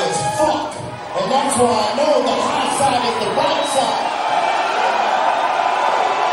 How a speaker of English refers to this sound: You hear that? A lot of dudes. No, it's a lot of people. There are a lot of dudes. They're loud.